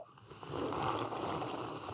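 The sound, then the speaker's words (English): A sustained, airy slurp of hot tea being sipped for an ASMR moment, a breathy hissing draw that swells after a brief soft start and carries on steadily for about two seconds with no talking. “Everybody sip. Everybody sip. Okay, ASMR time.”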